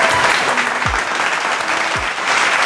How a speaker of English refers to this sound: I have finished season one of Why Aren't Thou. So, I'm at a round of applause. Yeah, standing ovation.